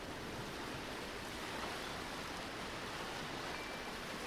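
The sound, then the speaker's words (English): Ocean waves wash in a steady, continuous roar of surf, without distinct individual crashes standing out. The sound is fairly soft and even throughout, with no voices. “Though the waves crash around me, tumultuous and fierce, I have nothing to fear, for I am not a ship navigating the storm.”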